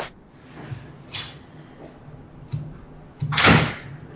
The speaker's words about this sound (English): Oh, what happened? They just closed the door.